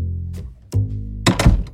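A few heavy thuds of a door slamming shut, with the last two impacts coming close together and hitting hardest, over a low, steady hum.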